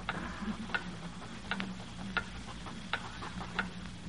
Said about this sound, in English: Now, as the 40 pens of 7B put answers on an empty page, and the wall clock ticks, the door swings open,